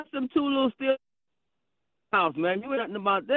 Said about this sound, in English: So wait, you broke up there for a second.